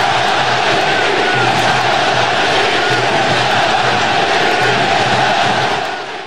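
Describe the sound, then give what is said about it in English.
A huge baseball crowd at the Oakland Coliseum, during an A's game against Tampa Bay, roars and chants "sell the team" in unison, a dense wall of voices sustained at high volume throughout, with rhythmic swells underneath before it tapers slightly at the end. “Crowd goes silent and now getting very loud at the Coliseum.”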